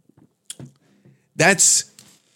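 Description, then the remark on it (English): A few soft wet clicks, then a loud slurping sip of no-name brand sparkling water with a hissy, breathy burst lasting about half a second, followed by quiet mouth noises. “I load up a glass of tap water if it's not a nice no-name brand sparkling water, as I'm having right here on the podcast, right?”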